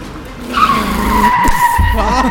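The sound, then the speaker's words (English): A race car's tires screech in a long, sustained skid over a loud engine rumble, followed by a couple of heavy thumps as it slams into a barrier. “Oh, we hit that wall!”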